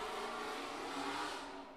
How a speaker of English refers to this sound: If you heard that fast-ass car barreling past my place, apologies.